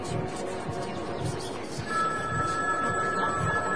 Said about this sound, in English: Hello? Why won't this phone work? Can you get that? I'm trying to answer it, but it just won't quit ringing. Oh, that phone only can be answered at the end time.